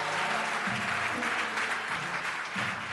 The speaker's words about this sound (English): Can you give a clap of offering for the women here, somebody?